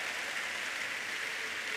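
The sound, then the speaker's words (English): An audience claps together as a clap offering to the Lord, in a dense, continuous wash of applause, with the individual claps blurring into a steady hiss-like roar and no voices heard. “Give the Lord a big clap offering, everybody.”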